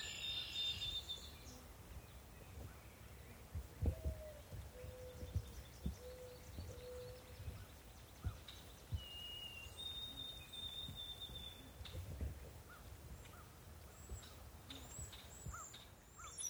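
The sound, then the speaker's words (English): A brown-headed cowbird gives a high-pitched, jumbled song of thin whistled notes, repeated a few times over a steady background of outdoor noise and other soft bird calls. “And that high-pitched jumble of notes is a brown-headed cowbird.”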